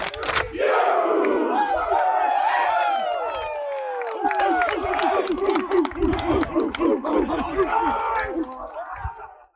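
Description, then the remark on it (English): A large crowd at an award presentation roars and cheers loudly as the MVP award is lifted, many overlapping voices shouting and whooping in a sustained wave, with scattered claps cutting through as the noise gradually eases toward the end. “It is friggin' class, like, and the cheers, and like that being one of the loudest cheers.”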